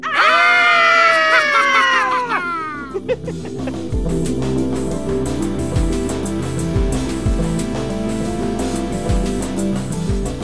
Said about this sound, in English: And to introduce Scream Time, I think we should all give our best Halloween scream. You guys ready? Oh, sure. Yep. 3, 2, 1...